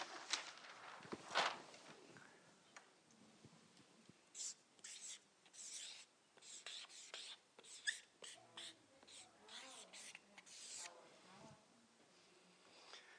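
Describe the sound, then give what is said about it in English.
A pen scratches across a fresh sheet of paper in short, irregular strokes, fairly quiet, with brief pauses between bursts of writing and soft background noise underneath. “I'll tell you what, I'll put you on a new piece of paper.”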